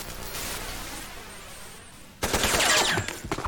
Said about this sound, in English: She's shooting wildly around Snake just to make him stay back.